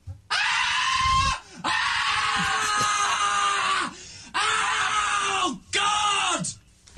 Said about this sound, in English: He has that high-pitched scream. High-pitched scream.